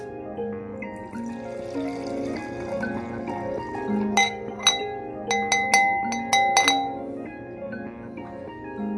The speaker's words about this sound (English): So, you know what's coming next. Let's pour me a nice and juicy glass.